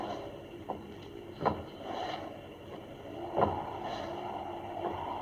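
Uneven, limping footsteps of a man with a weak spine walking with a cane, coming this way: about seven irregular thuds and taps over a steady hiss of rain. No one speaks.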